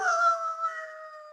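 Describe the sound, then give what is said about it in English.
A three-quarter Irish setter in Manchester Village, Vermont lets out a single sustained howl, a steady, clear tone that holds fairly loud before tapering slightly, with no talking. “Jacko, the three-quarter Irish setter. A good dog, usually a well-behaved dog”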